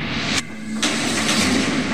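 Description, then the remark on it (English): A heavy shed door slams shut with a sharp, loud bang, followed moments later by a second hard thud, set against a constant rushing background noise. “door slammed shut.”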